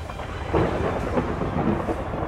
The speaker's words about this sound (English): As a sudden storm front increased in strength